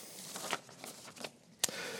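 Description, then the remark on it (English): Soft, crisp rustling of two sheets of paper being handled, with a few scattered crinkles and one sharper snap near the end; no voices. “That's two bits of paper.”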